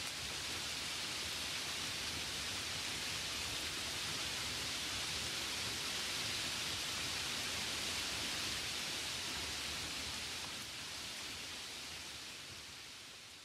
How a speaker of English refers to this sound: Nobody started it. Nobody is going to stop it. It will talk as long as it wants, this rain. As long as it talks, I am going to listen.